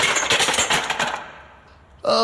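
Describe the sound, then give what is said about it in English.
A small motor scooter engine in the car park under the Underdogs office sputters in a rapid, rattling burst for about a second as Detective Barkley tries to kickstart it, then fades out as the kickstart fails, before a sudden tonal sound cuts in at the end. “I'm watching Detective Barkley literally try to kickstart their motor scooter. It's not going well.”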